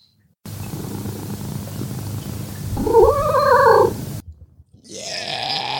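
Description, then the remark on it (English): A cat yowls in a long, loud, wavering call that rises and falls in pitch like a scale, preceded by a low rumbling purr, with no talking. “I'm going to do that thing again. The one where he runs the scale?”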